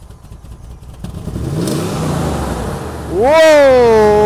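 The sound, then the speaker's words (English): A Durango's engine, just repaired, cranks and catches, idling with a low rumble that climbs in pitch, then revs loudly into a strong, steady whine for the last second. “Oh, listen to her purr.”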